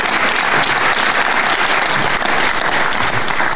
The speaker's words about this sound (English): It's Andy Cole. Can we have some applause, please, for a treble winner? Thank you.